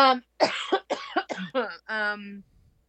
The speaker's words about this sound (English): I have this like lingering cough.